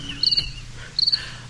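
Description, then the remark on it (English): Two quick, high-pitched cricket chirps, each a rapid trill of several pulses, separated by a short pause, clear with no voices. “Where's the cricket sound now, dude?”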